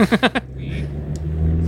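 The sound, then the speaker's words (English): A Scion xB car being driven to work, with a steady, low engine and road rumble that hums continuously, preceded by a brief burst of a voice at the very start. “while he's driving to work”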